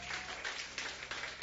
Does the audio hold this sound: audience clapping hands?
yes